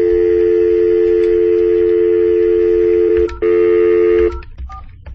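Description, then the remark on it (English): A steady electronic phone tone holds for about three seconds, then a brief gap and a second tone burst, followed by a few short beeps as a call is dialed; no one speaks. “So if I make a phone call now.”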